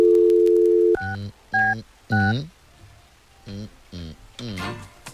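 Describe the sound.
A steady, loud telephone dial tone hums for about a second while a call is placed to a request line, then cuts off, followed by several short bursts of voice-like sounds.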